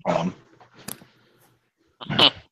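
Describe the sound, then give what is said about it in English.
A dog gives two short, harmonic barks or yelps, one at the start and one near the end, with a brief whimpering sound in between, moderately loud. “Shoot, I gotta check on my dogs real quick.”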